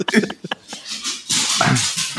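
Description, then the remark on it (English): A big dog's claws click and tap quickly on a hard floor in a short, uneven burst, followed by a louder stretch of rustling, hissy noise. “Dang, that dog is tap dancing.”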